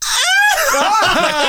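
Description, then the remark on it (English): A person imitates the squealing scream of a video game character with their voice: a loud, high-pitched shriek that rises sharply at the start, then wobbles and warbles for about a second and a half, with no talking. “Can you give us an impersonation of the scream?”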